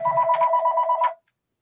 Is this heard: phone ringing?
yes